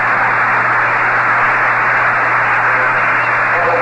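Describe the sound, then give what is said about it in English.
A continuous, dense wash of tinny broadcast sound from thousands of Dodger fans' transistor radios playing the baseball broadcast at once across the stadium, blurring into a steady hiss over a low hum, with no distinct voices. “what you're hearing is those thousands of transistors turned on here in the stadium”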